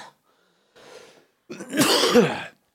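A person coughs: a soft breathy rasp, a brief pause, then one loud, harsh, rough burst of coughing, with no talking around it.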